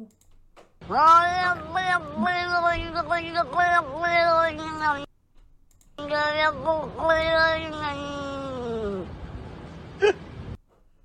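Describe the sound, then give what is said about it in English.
A cat in a played video meows in two long, drawn-out yowls with wavering, almost speech-like pitch that sounds like a Cork Irish accent, separated by a brief pause, loud, like a recording played back. “How does the cat have an accent?”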